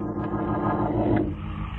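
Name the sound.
car driving off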